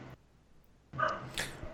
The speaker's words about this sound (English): And they sounded like dog barking, and then Kevin kind of gets up and looks around.